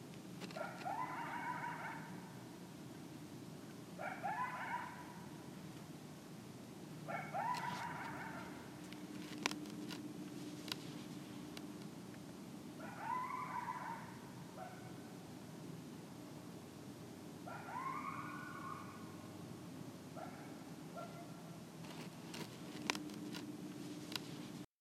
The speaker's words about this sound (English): That's coyotes. They do that like every night.